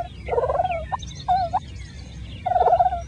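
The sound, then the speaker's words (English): A turkey purrs in three soft, rolling trills with short pauses between them, a low fluttering churr set over a steady low rumble. No one speaks. “That's a happy turkey purring.”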